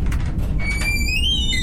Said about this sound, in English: I'll just open the door.